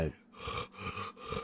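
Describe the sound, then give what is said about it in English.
Heavy, rasping breathing: three loud, noisy breaths in quick succession with a steady, laboured rhythm and no talking. “Can you hear the heavy breathing?”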